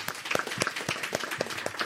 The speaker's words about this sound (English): Round of applause for Maddie, please.